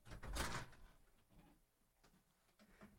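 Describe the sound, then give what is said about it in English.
A door shuts with a solid thud, followed by a few faint mechanical clicks as it is locked. “I'll lock the door now.”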